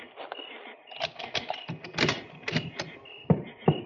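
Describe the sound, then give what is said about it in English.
Crisp metallic clicks and rattles of keys working the lock of a station door follow one another irregularly before the door is pushed open. There is no talking. “Now, unlock the station door and go in ahead of me.”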